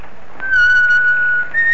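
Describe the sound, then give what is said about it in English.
A man riding along at a leisurely pace in the evening whistles a short, lilting tune, a long held note sliding slightly before stepping up higher, clear over a faint background hiss with no talking. “He rode along at a leisurely pace and whistled as he went.”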